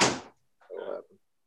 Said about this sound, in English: Let me close this door so my wife doesn't wander in.